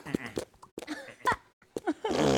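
Short bursts of voice-like sound give way to a loud, buzzing, flatulent fart noise at the very end, raspy, cutting in abruptly.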